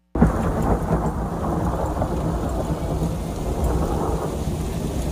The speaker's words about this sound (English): Yeah, a little bit of thunder snow there. Thunder heard rumbling overhead as rain, snow, and sleet fell in parts of Texas late last night. This video is actually right from the Lubbock area.